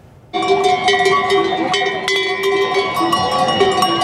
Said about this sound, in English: All right, this is why I asked, okay? More than 2,000 sheep replacing usual traffic in central Madrid. Take a look at this.